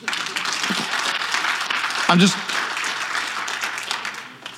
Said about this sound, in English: Come on, if you believe me, clap.